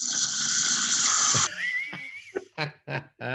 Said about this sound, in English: Here we go. Oh, you're snoring. Well, it's not as bad as I thought.